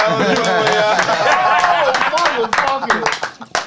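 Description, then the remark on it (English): A few people clap in quick, uneven bursts while loud voices talk and laugh over it. The claps are sharp and irregular, growing sparser toward the end. “Let's clap it up.”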